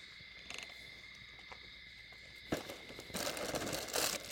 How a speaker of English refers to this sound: Yeah, this is just a little, you know, campfire ASMR. People they pay good money to hear this stuff too